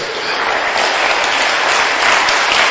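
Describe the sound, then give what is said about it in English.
A church audience bursts into steady, loud applause for Jesus, many hands clapping densely at once with no pause, the sound holding strong and even throughout. “Clap for Jesus.”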